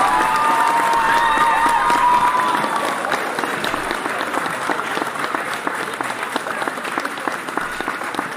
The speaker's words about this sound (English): Shouts out to our next door neighbors for growing population, but they're doing good stuff, so we'll give them a round of applause for that. We can do that.